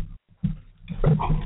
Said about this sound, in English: Even the dogs are going crazy.